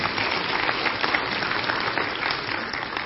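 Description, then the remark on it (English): An audience claps steadily for about three seconds, a dense, even patter of many hands at a fairly loud, constant level with no voices over it. “So, yes, you clap.”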